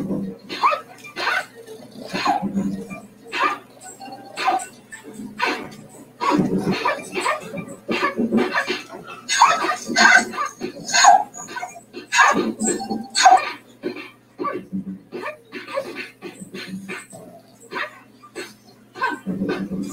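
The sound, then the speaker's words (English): A dog barks, yips and whimpers in quick, repeated bursts over about twenty seconds, fairly loud, with a few short gaps between volleys, in a homemade adventure video its owner filmed with it. “Here's an adventure movie that me and my dog filmed a while back.”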